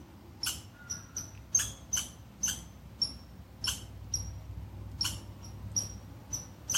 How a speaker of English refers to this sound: And of course, if the squirrel keeps alarm calling, it's my duty to move away from this area. To respect the call for boundaries.